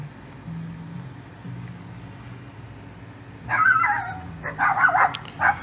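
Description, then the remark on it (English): Several dogs bark and yip behind open windows in a burst of overlapping, excited barks that starts after a few quiet seconds, fairly loud, over a low background hum. “No, just fucking asshole dogs. All day long, this fucking thing.”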